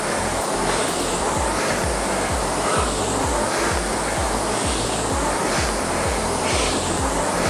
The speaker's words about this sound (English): Listen to that flywheel accelerate as you take each stroke.